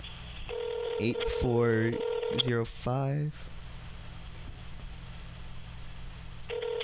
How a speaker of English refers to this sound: pick up the phone, please. Boo. Salute. I know you're home. Pick it up.